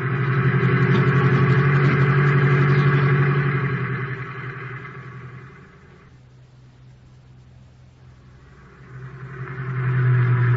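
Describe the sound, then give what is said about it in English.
A taxi cab's engine hums steadily and loudly as the car drives, dropping to a quieter rumble partway through before swelling back up. No one speaks. “You better stop your cab here”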